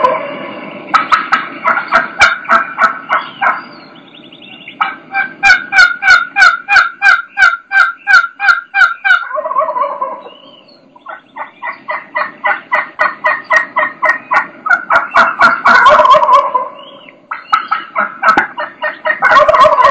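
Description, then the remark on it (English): Turkey hens calling in long, rhythmic strings of yelps, mixed with sharp clucks and fast, choppy cutting, overlapping loudly with little pause and no talking. “So they just keep, you know, the number of yelps they're doing, the string of yelps is getting longer, and they're starting to throw more clucks in there, and now she starts throwing some cuts in there.”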